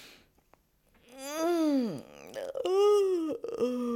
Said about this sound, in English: But let's start with a really good yawn stretch.